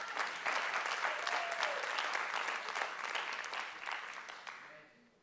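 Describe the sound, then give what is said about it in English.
An audience at a Christian sermon bursts into steady, dense applause, many hands clapping together for about five seconds before fading out at the end, with a faint voice briefly audible underneath. “If you clapped, I hope that that means that you are engaged in this war.”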